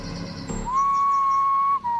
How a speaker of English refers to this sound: A single whistle sounded to the left of me.